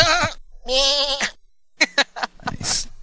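A sheep bleats twice in quick succession, each call loud and quavering, followed by a few sharp clicks and a brief rustling hiss.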